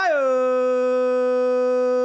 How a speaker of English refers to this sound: Woo, my dog is doing a lazy howl from down. He's half asleep. He's fucking howling it up. Still giving us his time.